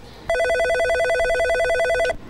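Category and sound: signal or alarm, telephone ringing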